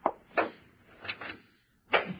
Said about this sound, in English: There. That does it. Now, careful, Maxie, when you close the door. Okay.